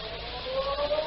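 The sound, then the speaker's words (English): The Ferry Building siren in downtown San Francisco sounds 8 o'clock: a siren tone swells in and holds a steady, sustained wail over a low background rumble, fairly loud, with no voices. “The next morning, just as the ferry building siren was announcing 8 o'clock to downtown San Francisco”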